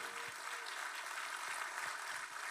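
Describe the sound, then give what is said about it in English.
The True North church audience claps for Jesus, steadily throughout, a dense wash of many hands applauding together with no voices standing out, for a few seconds. “True North, clap for Jesus.”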